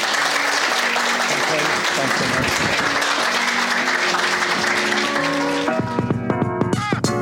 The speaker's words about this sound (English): So big round of applause and thanks for being here.